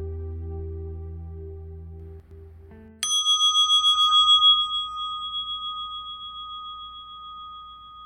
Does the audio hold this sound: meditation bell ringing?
yes